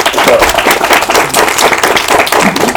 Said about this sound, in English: If you're organizing a convention, yeah, give them a round of applause, because seriously.